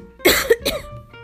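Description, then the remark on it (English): Two harsh, hacking coughs in quick succession, fairly loud, like someone forcing up peanut butter and jelly stuck in the throat, with no talking. “They even had to cough up pieces of food sometimes.”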